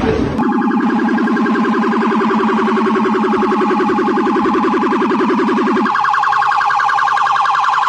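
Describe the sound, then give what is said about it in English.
A loud police car siren blares near Malibu Pier in a rapid, steady electronic warble for several seconds; its lower tone drops out near the end while the higher pulsing wail continues. No one speaks. “And look at all these police cars here.”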